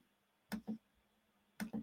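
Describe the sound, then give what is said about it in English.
Two quick double-clicks from a computer mouse, sharp, spaced about a second apart over a faint steady hum, as someone holds Control and selects items one by one. “I'm selecting these by clicking on control and then just selecting each one.”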